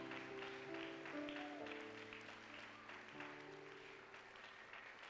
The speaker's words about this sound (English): Keep clapping for them. Keep clapping for them till they all get here.